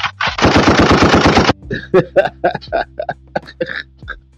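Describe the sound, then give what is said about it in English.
A loud, rapid burst of automatic gunfire rattles for about a second and a half, then gives way to a string of short, clipped, voice-like bursts. “let's get a gunshot with that one, baby.”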